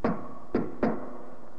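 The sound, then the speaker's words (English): Three firm knocks on the locked wooden door of a jury room: a single rap, a short pause, then two more in quicker succession, each with a brief resonant thud. No voices, and quiet after the last knock. “Then the knock on the locked door of the jury room.”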